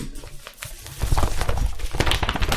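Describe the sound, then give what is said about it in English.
A chair creaks and knocks as someone leans to the side to pick up research material, an irregular series of short, scratchy creaks and soft thumps, quieter at first and then busier and louder for the last second and a half, with no one talking. “Creaky chairs in the background.”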